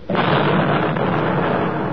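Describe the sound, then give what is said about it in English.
A V-1 flying bomb, its engine having stopped, drops in the next block in London in 1944 and explodes with a sudden loud blast that swells into a dense, sustained roar and rumble, holding steady without fading for the whole two seconds. No voices. “Look out, here comes another V-1. Yeah, the engine stopped.”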